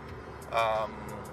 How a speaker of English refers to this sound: I do these on my car, hence the background noise, driving, and the radio playing non-copyrighted music in the back